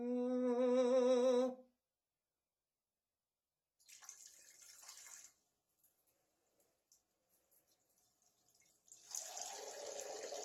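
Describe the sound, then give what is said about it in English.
A toilet flushing: a loud rush of water, a pause with a few scattered drips, then another strong gush. It opens with a brief warbling, wavering tone. No one speaks. “that is me flushing the dreams of Travis the Walker Anderson becoming promo champion right down the toilet”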